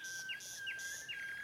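A nightingale sings in a short, quiet phrase: three quick swooping chirps repeat at an even pace over a thin, sustained whistle-like tone, with no voices.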